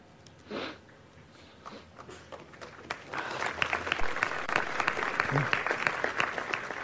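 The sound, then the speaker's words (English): Applause starts hesitantly with a few scattered claps, then builds after a few seconds into fuller, steady clapping from an audience, though it stays fairly subdued and uncertain. “Like, how nervous is that applause?”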